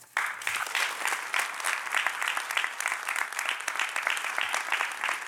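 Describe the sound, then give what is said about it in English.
An audience applauds ten essayists steadily, with dense, crackling handclaps that start abruptly and hold an even, fairly loud level throughout, no voices standing out. “And let's give another round of applause for our 10 essayists.”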